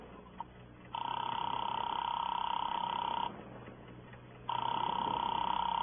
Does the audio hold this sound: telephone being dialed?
yes